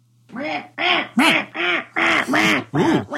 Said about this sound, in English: Wow, that was like a trained parrot. It starts from one end and goes through and disappears at the other.